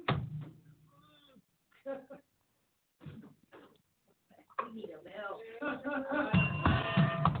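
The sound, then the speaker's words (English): Bells ring out with sustained, bright metallic tones over a voice, growing fuller and louder toward the end after stretches of talking and brief pauses. “I love these bells, and I know some of y'all have like, ooh, wow, I don't understand why she does it.”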